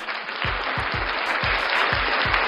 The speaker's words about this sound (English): First of all, let's give the boy a round of applause for Lewis.